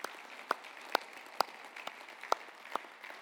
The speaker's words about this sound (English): And I want to start by just saying thank you to each and every person that is making a difference. Can we give each other a round of applause?